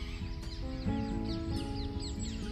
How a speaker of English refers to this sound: As I sit here, it's quite early. It's very still and very calm. And all these birds around me singing their beautiful tune with their beautiful voice.